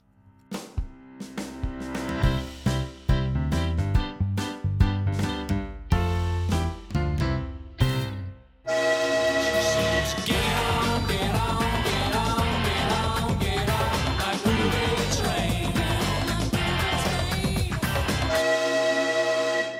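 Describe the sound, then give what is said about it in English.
A train rumbles past with rhythmic clattering bursts, then a loud, sustained horn blares for about ten seconds before cutting off. No one speaks. “Another train. Good timing.”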